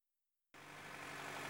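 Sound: truck engine driving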